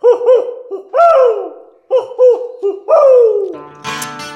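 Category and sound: bird, owl hooting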